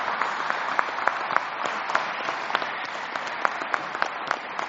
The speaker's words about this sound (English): I think as we take a seat, we should give a big round of applause to them. Should we do that? Yeah.